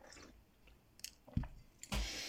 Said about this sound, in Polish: Ale łyk herbatki, wiadomo.